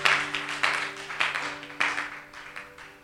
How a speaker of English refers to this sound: Why don't you clap for Jesus as you take your seats?